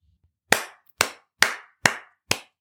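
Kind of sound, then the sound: crowd, audience clapping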